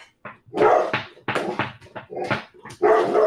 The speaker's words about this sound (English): Oh my gosh. Wow, that's the most I've heard him bark on mic before. He's being a dick.